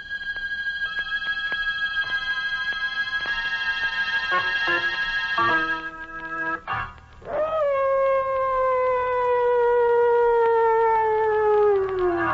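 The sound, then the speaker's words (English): Long, sustained howls of mad dogs rise and slowly slide downward, loud, with a steady clock-like ticking in the first half and no talking; the story is set in darkest Africa. “John Carradine isn't exactly soothing to your nerves, but put them together in a story set in darkest Africa with mad dogs howling in the background and, whew, well, find out for yourself.”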